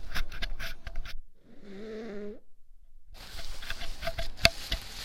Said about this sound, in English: I had to blow my nose.